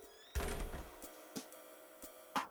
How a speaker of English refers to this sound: goes back into the office she's been camping out in and closes the door.